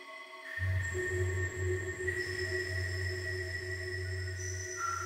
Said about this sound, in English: Only focus on the breathing and the humming that comes from the crystals, the chamber, the crystal chamber. Your crystal chamber.